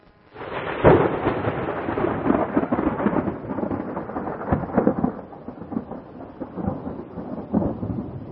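A long, heavy roll of thunder booms in after a brief quiet and keeps rumbling steadily for several seconds, loud and broad with crackling bursts, slowly easing off toward the end.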